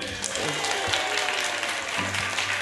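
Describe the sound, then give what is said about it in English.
An audience at a live book event in a bookshop claps steadily, a dense, even wash of applause that holds at a fairly loud level throughout, with faint voices mixed in. “And I'll need some clapping for the end of the podcast.”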